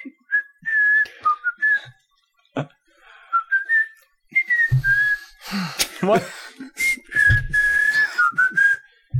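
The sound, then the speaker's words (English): A theme tune whistled by several people in a bright, wavering melody that drops out and resumes, broken up by bursts of noisy breath or laughter and a short spoken word. “That'll be the fucking theme. All of us whistling it.”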